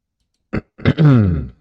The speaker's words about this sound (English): Clear my throat a little bit. Sorry about that.